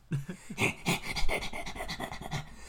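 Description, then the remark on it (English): A person imitates Muttley's wheezy cartoon dog laugh, a run of about ten rapid, breathy, panting snickers in a steady rhythm, hissy and raspy, with no words spoken. “That was my Muttley laugh.”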